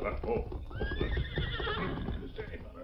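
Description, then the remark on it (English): A horse whinnies loudly, its rising, wavering call riding over a steady clip-clop of approaching hooves, with a voice speaking underneath. The horse is Scout, Tonto's paint horse. “As the masked man sat in the shadows near the stage office, he heard hoofbeats approaching.”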